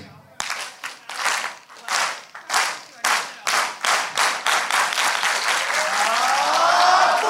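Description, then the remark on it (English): A group claps in slow, steady unison, the beats drawing closer together until they dissolve into fast, continuous applause with a few cheers rising at the end, to open a Pathfinders Connect Night meeting. “and we're going to do what's called clapping it up, where I'm going to do a slow clap. It's going to lead to a fast clap.”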